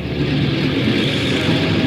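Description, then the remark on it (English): An airplane's port engines are started during pre-takeoff checks, running with a loud, steady droning roar, its low rumble holding evenly throughout with no voices over it. “Port engine one, port engine two.”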